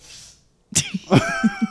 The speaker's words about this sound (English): What's wrong? You have to sniff? Go ahead.